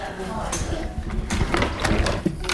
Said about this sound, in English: And just in front of us, you will see a massive wooden case with about 16 drawers, which all contain lead type. Shall I open one and show you?